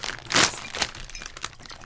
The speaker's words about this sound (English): Hey, let's open these bags. Let's open them. Which one should we open first, you guys?